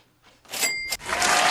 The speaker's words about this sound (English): I low key want you to drop the bag and do a hand clap real fast. Do a hand clap? Yeah, drop the little ching and a hand clap.